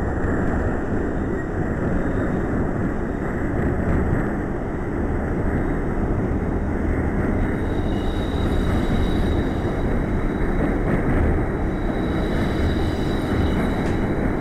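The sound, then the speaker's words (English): A subway train that the speaker is driving roars along with a loud, steady rumble of wheels on track, and a rising motor whine emerges partway through as it gathers speed. No one speaks. “At least when you can hear it when it's catching speed.”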